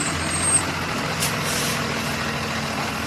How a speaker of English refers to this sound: A mother is dropping her kids off at the regular school bus and asked the driver to stop yelling at her kids.